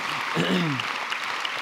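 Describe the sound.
An audience claps steadily for a guest in a dense, crackling wash of applause, with a brief voice rising over it near the start.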